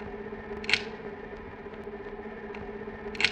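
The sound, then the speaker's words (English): Sharp mechanical clicks from an operating light repeat at a slow, steady pace, two louder snaps standing out among fainter ones, all over a constant low electrical hum. No one speaks. “The sound of the steady, regular clicking of the light in operation is what Roland Barthes might call a rustle, the sound of the good functioning of a machine.”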